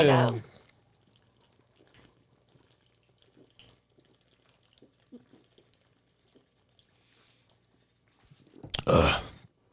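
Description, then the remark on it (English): Rapid gulping swallows as people chug fresh beers (one drinking water), a steady run of small wet clicks, bracketed by a loud burst of sound at the start and a heavy gasp or voice at the end. “since we're here, we have fresh beers. Why don't we chug it?”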